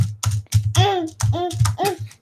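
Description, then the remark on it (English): Fast, forceful clacking on a computer keyboard in rapid bursts, loud, with a high, strained voice yelling over the typing. “Kids beating up your keyboard.”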